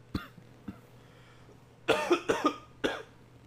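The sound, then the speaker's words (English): A person coughs repeatedly, a couple of small single coughs followed by a harsher burst of several rapid coughs and one final cough, fairly loud, with a low hum underneath. “Hold on, I got a cough.”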